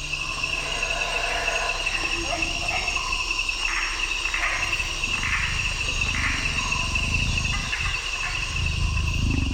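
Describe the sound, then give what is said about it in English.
A dense nighttime chorus of Amazon rainforest insects: steady, shrill trilling tones layered over one another, with pulsing swells that rise and fall, plus a low rumbling undertone throughout. “They were crescendos of loud sounds. And then they would be kind of harmonics of different tones that came with other insects or the same ones.”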